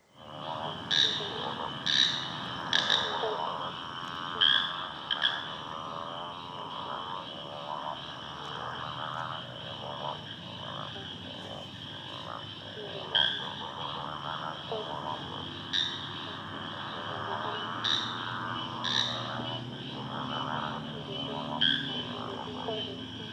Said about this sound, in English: So that one in the foreground you can hear is the grady one, that's the slender tree frog. Again, you can hear them at bailing up if you're listening out for them. And the other one is the motorbike frog, which sounds like, well, a motorbike